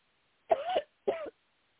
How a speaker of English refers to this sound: Deep breath and cough. Deep breath and cough.